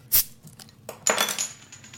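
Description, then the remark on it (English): Beer, a light ale, pouring from a bottle: a sharp glassy clink, a brief lull, then a bright fizzing, splashing rush with a lot of fizz that tapers off gradually. No one speaks. “So we've got the sound effects there.”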